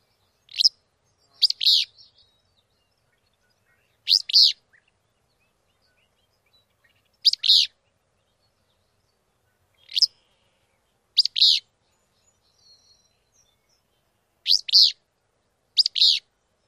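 A willow flycatcher sings short, high, buzzy two-part phrases, repeated about eight times at uneven intervals with silent gaps between. No other sounds or voices accompany it.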